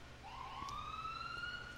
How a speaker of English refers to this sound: Oh, shit. Is it an ambulance? I'm fine with that. Yeah. Sweet sounds of Parkdale. I thought you said a cab, and I was like, since when do cabs have sirens?